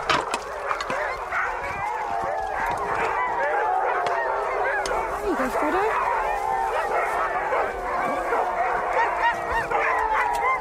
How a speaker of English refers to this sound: As the dinner is made, the teams of dogs start calling to each other.